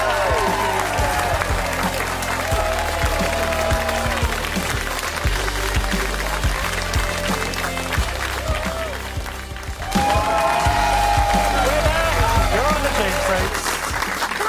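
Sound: audience applause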